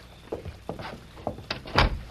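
An office door being tried and opened with a series of rattling clicks and knocks, ending in a louder thump as it gives way; fairly quiet, no voices.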